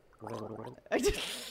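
A wet, bubbling gargle of water rattles steadily for most of a second, then breaks into a louder, noisy splutter and a hissing, throaty release at the end.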